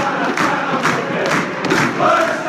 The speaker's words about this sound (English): that's Lustig, You're the One. Hey, that's a pretty cool song. Having the whole crowd cheering that out, it's pretty cool, and it shows you how much they truly loved him.